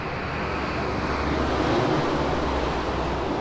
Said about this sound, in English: Well, there's a lot of planes going over today. They are. They're very active.